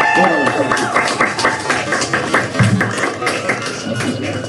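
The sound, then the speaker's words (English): A crowd applauds steadily as the Crockett Elementary Theater performers exit and head off to the track, with many overlapping claps forming a dense, sustained wash of sound that stays fairly loud throughout, with some background voices mixed in. “So let's give them one more big round of applause as they exit and head off to the track.”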